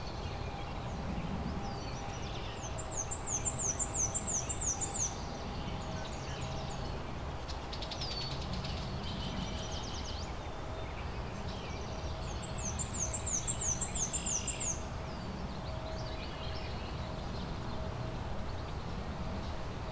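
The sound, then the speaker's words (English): A black-and-white warbler gives a thin, high, squeaky repeated phrase twice, about ten seconds apart, each a quick run of wheezy seesawing notes over a steady outdoor hiss. “Black and white warblers act a lot like nuthatches.”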